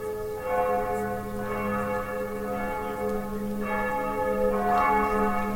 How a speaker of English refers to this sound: Then, from up above and far away, down the tunnel they had so lately traveled, was borne to their ears in a faint musical hum, the sound of distant bells ringing, a joyous and clangorous peal.